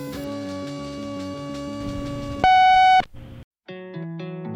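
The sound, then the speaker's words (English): A single loud, steady electronic beep of about half a second from the Athens 441 answering machine, like an answering machine tone, comes right after a stretch of layered synthesized tones, with more short tonal bursts following. “You've reached our answering machine. Please leave a message.”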